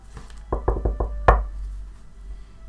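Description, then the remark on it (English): Four quick, evenly spaced knocks on a wooden door in a room with a lit hearth, followed by a single harder, louder rap, then quiet room tone, with no voices. “And yeah, the pair of you have been sitting by the hearth, having gotten the fire started, and drinking and catching up when the door knocks.”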